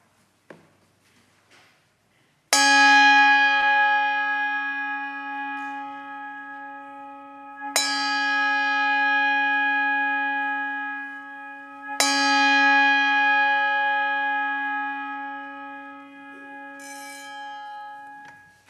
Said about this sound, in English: John Spinks will now come and ring the Trinity chime.